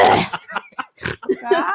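A loud throat-clearing cough opens, then several short raspy hacks and gurgly grunts follow in quick, uneven bursts, with no clear words spoken.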